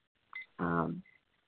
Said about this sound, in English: Is that the timer? Well, you have a minute.